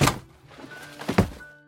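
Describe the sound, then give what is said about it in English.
A heavy wooden barn door thuds loudly as it comes off its sliding track, then after a brief lull tilts and crashes to the ground with a second, louder double impact that rattles and fades out. No voices. “With a thud, that door comes off of the sliding track, and it tilts slowly before crashing to the ground.”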